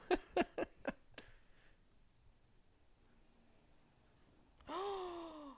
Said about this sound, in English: Love your genuine gasp.